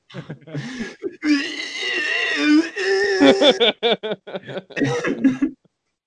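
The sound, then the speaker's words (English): A person imitates a deer call with strained, wavering high-pitched bleats and squeals, two long drawn-out cries followed by a string of short, choppy vocal bursts, ending abruptly. “That was a pretty good deer noise.”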